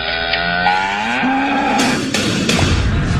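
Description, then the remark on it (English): A cow moos loudly, one long drawn-out low call with rising harmonic tone, followed by a few sharp thudding knocks near the end. “Anyway, first we must do cow.”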